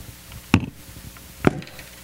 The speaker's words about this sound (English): That's a knock. I'm not coming to the door because I hear this.